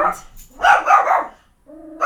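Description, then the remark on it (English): A dog barks loudly at a child in a quick burst of several sharp, overlapping barks, then pauses briefly before another bark starts. “I am house sitting with my dog, my own dog. He's barking at a child.”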